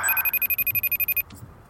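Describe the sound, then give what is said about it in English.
A telephone rings as a call is placed, with a rapid, trilling electronic warble, a fast burst of pulses lasting about a second before cutting off. It sounds clear, with no one talking. “The phone's ringing.”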